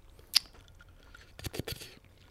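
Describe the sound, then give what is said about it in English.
Someone sips ice water: a sharp click, then a quick cluster of crunchy, rattling bursts like ice shifting. No one speaks. “This man sipped the ice water.”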